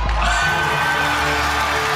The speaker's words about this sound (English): And then the music plays. The cheering. Why are people cheering? Because she just won 500K, baby. The audience is like, okay, she won a bunch of money.